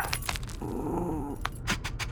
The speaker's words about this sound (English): I wonder what kind of dog it is. It doesn't sound very big. Yeah, I bet it's just a cute, fluffy little puppy. Actually, she's a robo dog I invented myself.